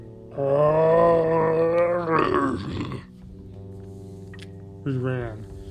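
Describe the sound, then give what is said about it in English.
A voice imitates a deep, drawn-out monster roar that breaks into a wet, gurgling rattle, as if a bear were drowning, then a shorter gurgled growl follows after a quiet pause. “It was like a gurgled kind of roar, as if like a bear was drowning.”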